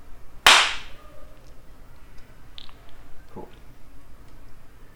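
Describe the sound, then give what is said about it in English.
One sharp, loud hand clap rings out near the start, made to mark the beginning of a recorded conversation before an introduction, with a short decay; a few faint small clicks follow. “I'll do a clap and then I'll do a little introduction and then we can start talking.”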